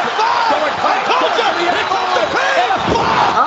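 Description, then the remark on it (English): Brock Lesnar slams Eddie Guerrero down onto the wrestling ring mat with an F5, a heavy, booming thud, nearly buried under a loud, continuous roar from a crowd, with voices shouting throughout. “That F5. The momentum.”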